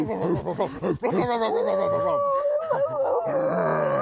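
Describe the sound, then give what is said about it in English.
A man on a New York street imitates a wolf at a passing woman, letting out a long, wavering howl after a burst of throaty grunting noises, loud, with other voices chattering underneath. “I'm a wolf.”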